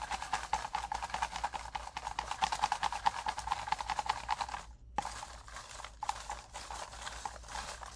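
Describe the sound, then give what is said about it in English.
Message cards are shaken and shuffled in a dense, rapid papery rattle that runs steadily for several seconds, breaks off briefly, then resumes less intensely. No one speaks. “All right, so I'm gonna close my eyes and shuffle these messages and pick one that you guys need to hear right now, and then that's a wrap for the episode.”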